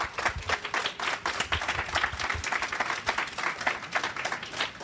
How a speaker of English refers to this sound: Can we give Russell a massive round of applause?